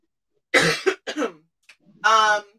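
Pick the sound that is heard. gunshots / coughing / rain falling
coughing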